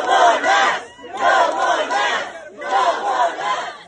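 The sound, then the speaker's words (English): A crowd of angry parents shouts threats at school board members in Tennessee, three loud chanted bursts separated by brief pauses, raucous with many voices overlapping. “Parents followed school board members to their cars where they threatened them.”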